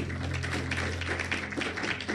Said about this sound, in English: Clap your hands for God.